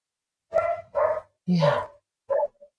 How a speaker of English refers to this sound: Oh, the dog's barking. I wonder what he has to say about it all.